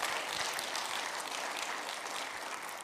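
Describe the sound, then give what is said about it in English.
A crowd claps for the people joining online on a morning, steadily for about three seconds, a dense, bright patter of many hands at an even, fairly loud level with no voices rising above it. “Can we give a big round of applause for those who've joined us online?”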